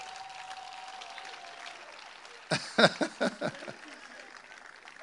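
After a stretch of low, steady background hum, an audience breaks into a short burst of clapping for Jesus: uneven, loud claps for about a second and a half before it tapers off.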